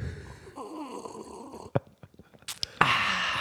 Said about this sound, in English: Delicious. Everyone had to listen to you slurp the shit out of that cup.